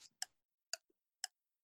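A ticking clock timer started for a round of quick questions: sharp, dry ticks arriving at a steady pace of about two per second, fairly quiet, with silence between ticks and no voices.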